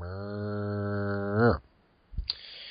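A cow lets out one long, deep moo, loud, holding steady for over a second before lifting briefly at the end; a short muffled knock follows after a pause.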